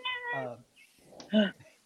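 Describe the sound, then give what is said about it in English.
A female cat meows loudly, two drawn-out, wavering calls separated by a short pause, with faint background noise between them. “I can't speak over you half the time because it's so fucking loud”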